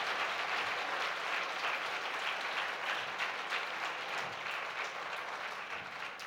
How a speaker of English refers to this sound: Let's give King Jesus a mighty hand clap. Kita tepuk tangan untuk kemuliaan bagi Raja Tuhan kita.